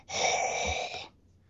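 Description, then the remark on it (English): A single loud, raspy breath rushes out, lasting about a second before cutting off into near silence; a person breathing hard after running up two flights of stairs. “You're like breathing hard.”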